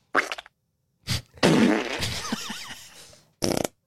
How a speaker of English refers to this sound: How I imagine my teacher's farting.